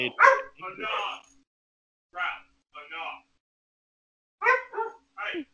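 A dog named Ralph barks and yips in short bursts: a quick cluster at first, a pair after a pause, then a final run of three sharp yaps.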